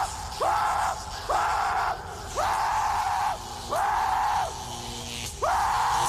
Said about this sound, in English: Because I like to scream like... Never stop screaming.